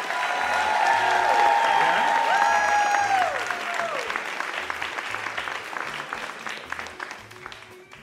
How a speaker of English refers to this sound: Come to the stage. Come on, keep clapping.